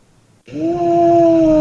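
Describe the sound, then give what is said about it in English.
After a brief silence, a person lets out a loud, sustained imitation of a Tyrannosaurus rex roar, a steady, low, droning growl that holds its pitch for over a second. “That sounded like a walrus and it did a Tyrannosaurus Rex.”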